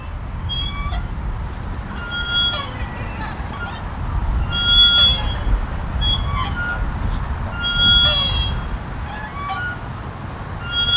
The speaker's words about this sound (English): The sound of swing slowly wakes me from my thoughts, and I open my eyes.